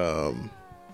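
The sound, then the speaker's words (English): A person voices a loud, drawn-out meow, a single nasal cat-like wail that slides downward and trails off into a quieter tail. “They did the meow thing again. Meow.”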